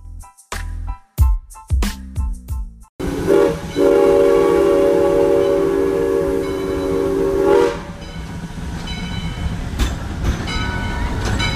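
A train rumbles past, sounding several short horn blasts followed by one long, loud sustained horn, with the heavy rolling clatter of the cars continuing after it stops.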